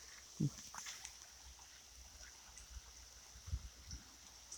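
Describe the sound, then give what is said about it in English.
Soft rain falling on the leaves of a tree in Ireland makes a faint, steady wash, broken by two heavier low drips or thuds. A thin high hiss runs underneath, and nobody speaks. “Sound of the rain falling on the leaves.”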